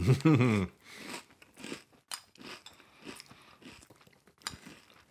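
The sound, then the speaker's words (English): Loud crunching of cereal being chewed: a steady run of crisp, crackly bites roughly every half second, following a brief voiced hum at the start. “Nothing that people enjoy more than the sound of crunching in their ears.”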